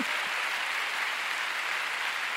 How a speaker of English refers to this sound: Come on, somebody, give God a big hand.